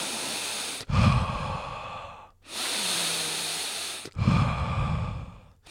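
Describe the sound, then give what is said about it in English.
Deep, powerful breaths: a long rushing inhale, a sustained airy exhale, then another strong inhale, each lasting over a second with no talking. “And then I started breathing deeply, powerfully.”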